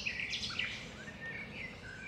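Several birds chirp and sing at once in the wetlands of Everglades National Park in southern Florida, a layered chorus of bright tweets and whistled phrases over a steady low outdoor hum, continuous with no one talking.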